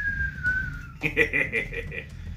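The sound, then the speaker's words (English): A person whistles a steady, slowly descending tone for about a second, imitating a falling projectile, followed by a series of short, chuckling vocal bursts. “You pull that lever, and you see this thing just, it's got a nice little whistle to it too, just...”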